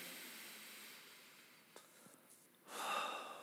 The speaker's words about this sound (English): Take a deep breath.